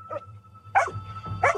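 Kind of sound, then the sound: animal, german shepherd dog barking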